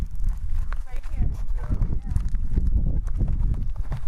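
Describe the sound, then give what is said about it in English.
Footsteps walking up a ramp, a steady series of hollow, knocking thuds, with muffled voices and a low rumble underneath. “We're walking up the ramp now.”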